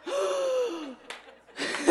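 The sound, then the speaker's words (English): An audience lets out a loud, drawn-out collective gasp as the stage lights are turned back on, fading after about a second, followed by a brief breathy burst and another swell of gasping reactions. “All the gasps.”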